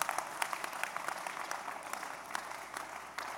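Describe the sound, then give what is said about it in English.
An audience applauds steadily, a dense patter of many hands clapping at once with sharp bright transients, sustained at an even level throughout without voices over it. “Your clap for the second house wedding.”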